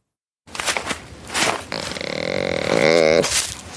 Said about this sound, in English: That's a deer. You're right. Actually, you're right. It is in fact a deer.